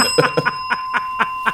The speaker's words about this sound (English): Bell has been rung.